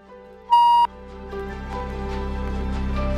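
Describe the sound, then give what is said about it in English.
A single short, loud electronic beep like an answering machine tone, about a third of a second long, over a low steady hum that continues afterward with soft tonal music. “Let me know what you think about this message after the beep. Here's the beep.”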